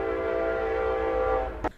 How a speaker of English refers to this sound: here comes the train